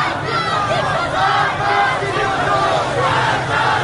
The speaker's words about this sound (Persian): صدای فریاد راهپیمایی کنندگان نزدیکتر و نزدیکتر می شود.